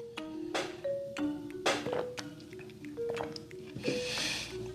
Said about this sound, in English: sorry, I took that long water break. My bad. I'm not editing it out.